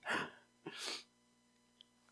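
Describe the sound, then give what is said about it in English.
A single loud sneeze: a voiced rising intake, then a sharp, breathy burst that cuts off quickly, leaving near silence with a faint click afterward. “Really, the only thing that hurts now is when I sneeze.”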